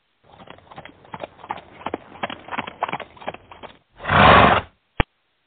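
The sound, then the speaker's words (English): A Victorian-era horse-drawn carriage trimmed with garland and bows clatters up to a nursing home in the snow with steady clip-clopping hooves and rattling wheels, then a horse lets out a loud whinny, followed by one sharp snort or thud. “Our team peers out the snow-covered windows to see a Victorian-era horse-drawn carriage trimmed with garland and bows pull up to the St. Nicholas Nursing Home.”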